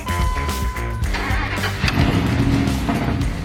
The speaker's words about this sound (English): 2002 Dodge Dakota with the 4.7-liter V8.